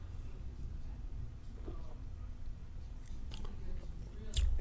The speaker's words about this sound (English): But first, let's have a sip. Here's to ya. Cheers. Cheers.